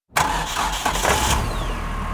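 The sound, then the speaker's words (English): A truck engine turns over and catches abruptly, then settles into a steady, fairly loud mid-pitched rumble with a faint rising whine as the truck backs away from a house and turns down a long gravel driveway, with no voices. “As my dad backed away from the house and turned his truck down our long gravel driveway”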